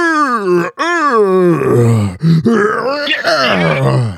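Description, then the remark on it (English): A man imitates the roaring scream wrestlers such as Keith Lee do when they come out, a loud, drawn-out vocal bellow with wavering pitch that rises and falls, breaking briefly before continuing in strained, gravelly yells for about four seconds. “What is it with all the goddamn roaring and yelling?”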